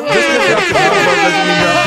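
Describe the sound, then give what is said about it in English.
A loud air horn sound effect blares continuously for about two seconds, its brassy, buzzing tone wavering slightly in pitch as it repeats without a break. “Give us the air horn.”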